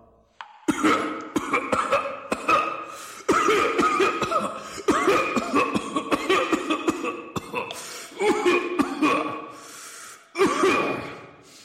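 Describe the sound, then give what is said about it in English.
A person coughs again and again in a long, ragged fit in a nitre-covered cavern, hacking bursts broken by wheezing gasps and strained breaths, loud, with only brief pauses before it starts up again. “How long have you had the cough?”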